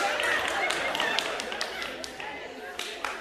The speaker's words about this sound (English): The men are looking at their wives. Can I applaud to that? Okay.